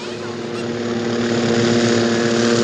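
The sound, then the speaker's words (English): A steady, loud engine drone from a Red Cross helicopter bearing a medical symbol, with a deep rotor hum, holding constant and swelling slightly louder over a few seconds, with no voices. “We see the helicopter with the medical symbol, which we see.”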